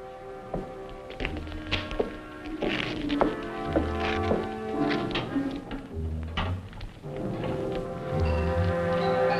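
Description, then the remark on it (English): Someone shakes up a wood stove: a steady run of irregular metallic thunks, taps and rattling scrapes for several seconds, with a faint sustained tone humming underneath and no talking. “If you'll excuse me, I think I'll shake up the stove a little. It's getting chilly in here.”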